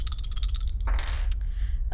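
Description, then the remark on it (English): Dice rolled during a tabletop role-playing game, landing on a 6: a quick run of small, bright clattering clicks, then a short rolling rattle across a hard surface and a final tap as the dice settle, fairly clear. “That's 6 on the dice, so 7, 8.”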